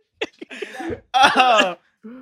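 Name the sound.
sneeze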